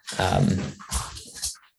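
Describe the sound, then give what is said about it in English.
A speaker's pet dog barks, a drawn-out first bark followed by two shorter, sharper ones, fairly loud with no talking over them. “Sorry, my dog's just gone.”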